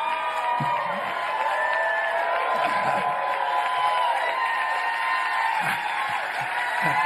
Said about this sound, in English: I appreciate that. When you get to be 87, people stand and applaud at the start because they're not sure whether you're going to be around at the end.